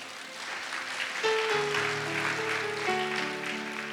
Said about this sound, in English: Clap for the Lord.